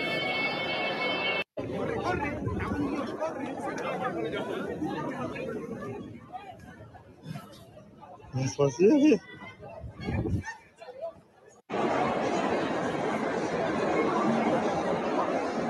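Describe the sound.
A dense crowd murmurs and chatters as people stream out of a subway evacuated over a bomb threat, lining up in an orderly way to get out the door, a steady wash of overlapping voices that briefly thins before surging back loud and full.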